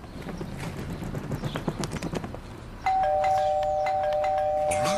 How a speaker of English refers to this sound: And one crow says he's going to play a trick on the guy who's sitting outside the house. And he flies around and rings the doorbell.